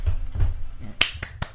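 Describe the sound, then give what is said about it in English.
A short burst of scattered applause, about four crisp claps in a loose rhythm, following a moment of low background murmur, given as someone enters. “You just have applause whenever anybody opens the door because they're entering the scene.”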